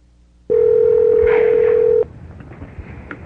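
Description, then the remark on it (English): A loud, steady telephone tone holds for about a second and a half, then cuts off, leaving a quiet line with faint clicks and hiss as a phone number from the back of a business card is dialed. “And he gave me a business card with a phone number on the back and wanted to be called at that number. And that's what we did.”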